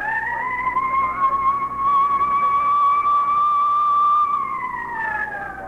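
A police car siren wails loudly, its steady rising-and-falling tone sustained throughout, with a low vehicle engine rumbling underneath as the car speeds through heavy traffic across downtown to the scene at the Broadstone Gallery.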